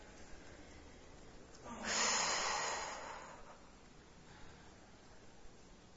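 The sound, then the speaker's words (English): One heavy, airy breath, a long rushing exhale that swells and fades over about a second, with no talking, during a yoga class while holding downward facing dog and stretching. “Breathing and stretching.”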